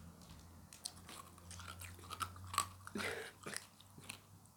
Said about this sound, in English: just crunching away.